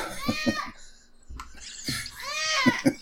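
A cat meows twice, fairly loud, with a drawn-out wavering call at the start and another near the end, a brief quiet gap between them and no talking.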